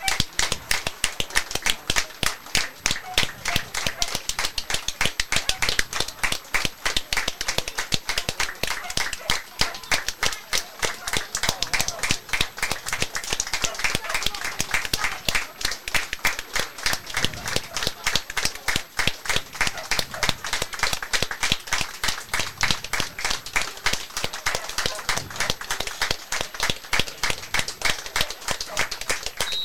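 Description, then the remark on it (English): A large Hitchin Town FC crowd at Top Field claps steadily and continuously for the full half-minute in a minute's applause for Peter Gooch, director of Alma Engineering, a dense, even wash of applause that never swells or fades, with no voices standing out. “So join us in a minute's applause now for Peter Gooch.”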